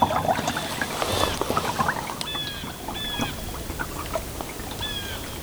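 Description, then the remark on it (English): Loons, three of them diving beneath the water surface, give several short, clear tonal calls in a loose repeating pattern over a steady wash of wind breezing across the water and lapping water on an open lake in Sylvania Wilderness, in the Ottawa. “And while most of those birds remained unseen during my visit, I was greeted by three loons busy diving beneath the water surface.”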